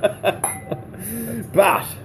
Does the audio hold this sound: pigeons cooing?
no